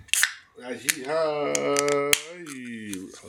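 A beverage can pops open with a sharp crack and a short fizzy hiss, followed by a wordless voice holding a drawn-out tone punctuated by a few small clicks.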